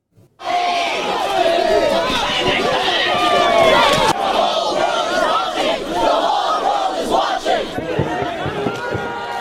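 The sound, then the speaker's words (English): A large crowd shouts and yells continuously at an anti-Kinder Morgan protest on Burnaby Mountain, filmed by the Sun News Network. Many overlapping voices form a loud, dense roar that stays steady for the whole stretch with no clear individual words. “Here's a clip we filmed back at the Sun News Network at one of the anti-Kinder Morgan riots, where Suzuki attended on Burnaby Mountain to cheer them on.”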